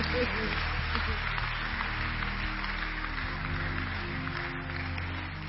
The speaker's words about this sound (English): Clap for him, he's done well.